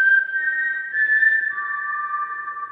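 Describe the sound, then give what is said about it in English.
A steady, loud whistle tone holds for over a second, then drops to a lower pitch and keeps sounding to the end, heard on its own with no talking. “Or is it the whistle? One or the other. You know what? Play either one for the Raiders and the Seahawks.”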